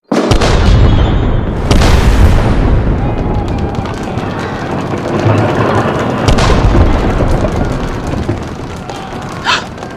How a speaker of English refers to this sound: She's only going to cause tiny explosions on the insides of the walls. It won't even affect us.